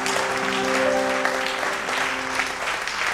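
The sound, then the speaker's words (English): A church audience claps for the Lord during a morning service, a dense wash of many hands with no clear individual beats, while a low sustained organ-like tone hums underneath throughout. “Oh, somebody give the Lord a clap in the house this morning.”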